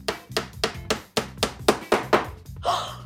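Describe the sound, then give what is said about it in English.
A hammer pounds a nail into a hard, brick-sized block made from an entire can of compressed garbage, with about nine loud, sharp strikes in a quick, steady rhythm, ending in a rougher, scraping burst. “Let's drive a nail through it and see what happens.”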